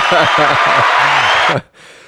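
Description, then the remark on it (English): A burst of canned laughter played from a sound-effect button pressed by mistake instead of the cheering button, a loud crowd laughing in rhythmic bursts for about a second and a half before it cuts off abruptly, leaving a faint hiss. “Well, we often try and push the orange for the cheering, but it is the laughter.”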